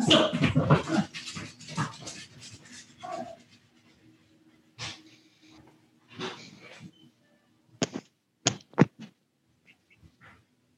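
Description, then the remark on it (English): A dog that needs to go outside pants and makes short, restless whimpering noises, with sharp bursts toward the end and quiet gaps between them. No one speaks. “My dog has to go out.”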